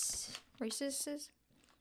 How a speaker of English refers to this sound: So if you hear us munching, we're eating. Well, tell them what it is. Reese's popped.